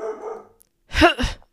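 A dog named Dog lets out a couple of sharp, loud, excited barks in quick succession, after a brief softer whine or murmur at the start.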